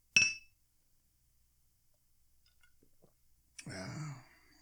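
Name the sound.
glasses clinking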